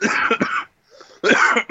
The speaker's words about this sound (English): Daggone it, you make me laugh too hard. I'm not actually dying. My cough just makes me sound like it.